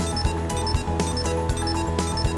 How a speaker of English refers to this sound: get a series of red flashing lights and beeps to let you know that you're getting very close. And if you do hit the timeout, then, well, you'll see all the lights come on and a little alarm goes off to tell you that nobody else can hear you anymore.